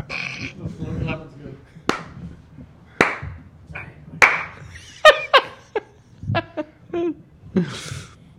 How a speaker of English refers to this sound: It's pretty good. The slow clap.